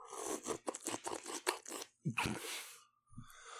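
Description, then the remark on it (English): A quick run of crackly bursts gives way to a loud, airy slurp of someone sipping a drink, followed by a faint gulp, with no talking. “Do you want to hear how I drink a beverage?”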